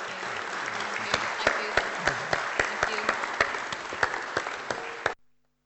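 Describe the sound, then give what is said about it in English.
An audience at a church denomination gathering breaks into sustained applause as thanks to conclude the evening, a dense wash of many hands clapping with a few sharper individual claps standing out, holding steady for about five seconds before stopping abruptly. “And a round of applause, I think, will conclude things.”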